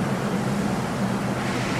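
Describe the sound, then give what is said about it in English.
A ferry's engines start up, droning with a steady, low, humming rumble beneath a broad wash of wind-like noise, holding an even loudness throughout with no voices. “Engines are starting.”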